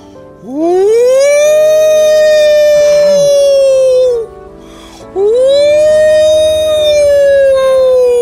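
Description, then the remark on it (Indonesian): A wolf, Gala, howls loudly twice beside a man sleeping under a tree, each long call sliding upward in pitch before holding a steady, mournful tone, with a brief pause between the two howls. “Lalu ia melolong keras sekali.”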